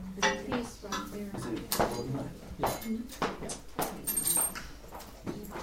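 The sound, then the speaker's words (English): Broken glass shards clink and scrape as they are picked up around a couch and from under someone's foot, a scattered run of sharp, bright ticks at an uneven pace, with low murmuring voices underneath. “There's a glass, got glass here, and there's a little right, here too.”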